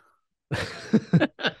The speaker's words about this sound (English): Yeah, my stupid hiccups.